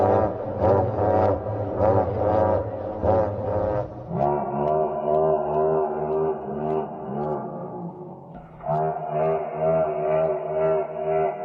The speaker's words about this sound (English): So they're saying this is what a T-Rex actually sounded like, which is hilarious to me for some reason. Let's check it out.